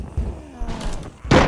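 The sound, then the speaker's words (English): Heavy wooden thuds and a creaking strain build to a sharp, loud crack at the end, like a wooden door being battered until it gives way, the wood splitting and splintering around the people bracing it. “The door begins to give way, the wood splitting and splintering around Podrick and Tormund.”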